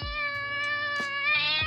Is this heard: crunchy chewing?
no